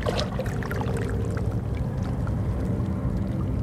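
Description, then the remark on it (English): Calm seawater gently sloshing and gurgling through crevices among large rocks covered in barnacles and seaweed at Kitts Beach, Vancouver, on a calm, slightly overcast, mild, windless January morning: a steady low wash with scattered soft trickles and drips, no voices. “The water moves calmly through crevices.”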